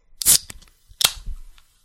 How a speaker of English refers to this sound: No, I cracked open a can, and oh. I put it right next to the microphone, but, you know, maybe it didn't get picked up.